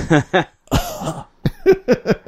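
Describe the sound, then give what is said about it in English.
A person imitates coughing with a quick burst of harsh, voiced coughs, two short ones, a rougher broad hack, then several more in a choppy rhythm, fairly loud. “And some random guy coughing.”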